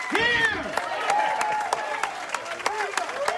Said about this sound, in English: So do this. Stand up and give a hand clap of praise to the King of the universe because he is.